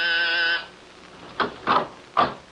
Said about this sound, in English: And I was just about to leave when my door buzzer sounded.